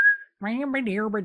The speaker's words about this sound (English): Oh, I'm whistling like literally full songs. I bet you are. You can whistle in and out.